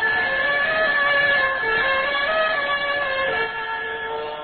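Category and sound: signal or alarm, burglar alarm ringing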